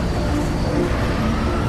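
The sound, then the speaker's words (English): The Batmobile's engine roars steadily as it races to Gotham Plaza, a dense, continuous rumble with road noise that holds its loudness throughout the short burst, with no voices. “Batman jumped into the Batmobile and raced to Gotham Plaza.”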